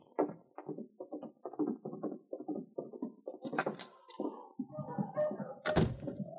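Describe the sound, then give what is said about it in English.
A front door opens and bangs shut, with a couple of sharp thumps standing out over muffled shuffling and indistinct voices. “We have their guns, but keep them covered just in case while we're going out the front door.”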